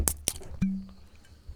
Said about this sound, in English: Ooh, I heard a Captain Jack Sparrow like treasure bottle open over there somewhere. Somebody's got something going on.